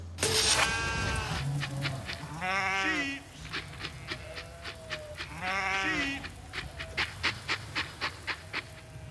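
Sheep bleat loudly in the middle of the night while being sorted, three long wavering cries a few seconds apart, with a steady rhythmic tapping or shuffling running underneath between them.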